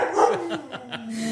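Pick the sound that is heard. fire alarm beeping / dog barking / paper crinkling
dog barking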